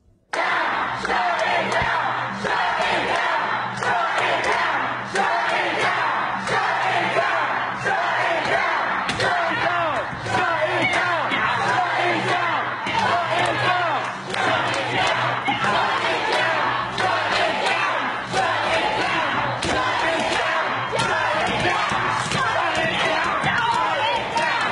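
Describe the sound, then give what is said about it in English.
A dense, loud crowd of protesting activists shouts and roars continuously at the Supreme Court of the United States in Washington, D.C., while repeated thuds and bangs break through the din as people pound and claw at the court's heavy bronze doors, which weigh 13 tons. “They were literally clawing at the doors of the Supreme Court of the United States, like, I don't know, like wild animals, like zombies.”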